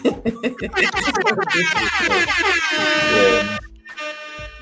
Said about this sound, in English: Give her another beep.